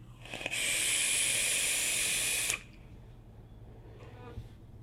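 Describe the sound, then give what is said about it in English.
A steady, airy hiss of air being drawn through the fully open airflow holes of a vape RDA wicked with cotton and loaded with Ronin juice by Dojo, holding for about two seconds before cutting off abruptly, with a faint low hum underneath. “Nice, smooth, swooshy airflow.”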